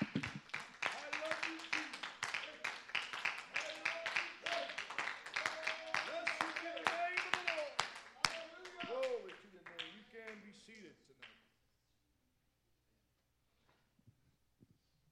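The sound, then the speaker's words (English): A church audience claps hands in praise of God after a prayer: dense, rapid, irregular clapping with voices calling and singing out over it, sustained for about eleven seconds before stopping abruptly into near silence. “Can you give him a hand clap of praise before you see?”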